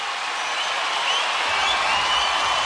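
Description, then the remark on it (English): An Adelaide basketball arena crowd cheers during a Sixers versus Taipans game, a steady, loud roar of massed voices that holds for the whole stretch, with a low rumble swelling slightly partway through. “Listen to this Adelaide crowd.”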